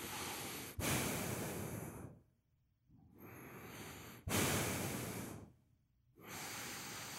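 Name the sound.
voice imitating heavy breathing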